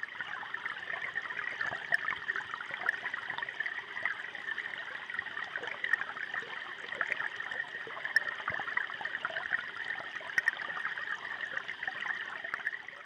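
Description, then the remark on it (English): River water flows steadily and continuously through a city, a broad rushing hiss with soft gurgles and trickles, even in loudness, with no voices present. “Despite everything else going on in the city, the traffic, the rushing, the noises, the river itself passes, threading its own course.”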